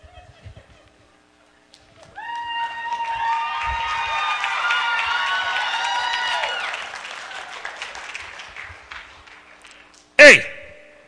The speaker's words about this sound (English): So I want you to give them a nice round of applause when you see them, because they're really shy, okay? And they like to get like amped up when you guys clap.